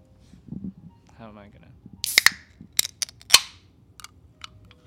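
A can of NOS drink being cracked open: a cluster of sharp, loud pops and clicks in quick succession, with brief fizzy tails, after a short faint vocal sound.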